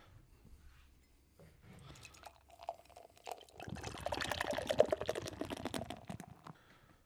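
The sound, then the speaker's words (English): Beer, an Artisan Ales Peach Crumble Treat thick with pureed fruit, pours steadily into a glass, starting with a light trickle and building into a fuller, bubbling gush with fizzy, splashing texture before tapering off. “Let's fucking get the pour.”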